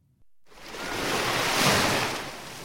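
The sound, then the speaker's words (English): Ocean surf washing onto a beach on Nantucket Island, a broad hiss of breaking water that swells to a peak and slowly eases, with no voices. “For this one, let's go to the beach for a 1 minute and 4 second vacation on Nantucket Island.”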